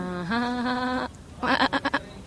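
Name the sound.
sheep bleating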